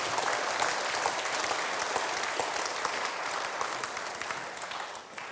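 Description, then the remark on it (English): A crowd applauds Jesus after a prayer with dense, sustained hand clapping that stays steady and fairly loud throughout, easing off slightly toward the end, with no voices rising above it. “Why don't you give Jesus a huge hand clap now?”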